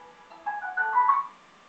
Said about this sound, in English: You need to take that call? Oh, no, it's just an alarm.